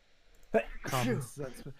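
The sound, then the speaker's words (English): A single forceful sneeze with a sharp breathy burst, followed by a brief voiced murmur. “Common sense, bless you again.”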